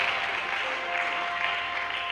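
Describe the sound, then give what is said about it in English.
A steady wash of audience applause for the speaker's brothers, many hands clapping at once in a dense, continuous patter that holds at an even loudness throughout, with no voices standing out. “clap for my brothers. Clap for them.”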